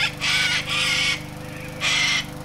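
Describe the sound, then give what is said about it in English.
A parrot in a neighbouring garden in Vienna lets out three loud, harsh squawking calls, two in quick succession and a third after a short pause, over a steady low background hum, provoked by the rumble of a lawnmower tending the garden. “The rumble provokes a parrot in the neighbouring garden, and he cheeps and twitters like a deranged talk show host.”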